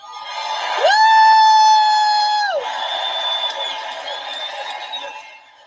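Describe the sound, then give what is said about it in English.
A MAGA rally crowd cheers loudly. A long, steady high-pitched whoop or horn rides over the first two seconds, then a dense roar of voices holds and slowly fades at the end. “We should let them hear how loud MAGA country is right now.”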